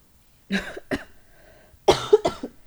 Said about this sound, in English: You can edit my coughs out. No, I'll let you, let the world know that you had COVID. We did indeed have COVID.